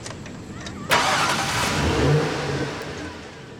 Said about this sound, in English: Great shot of Silvio starting the car, shifting to drive, and one-handing it out of the frame as Tony flips his phone and starts to dial.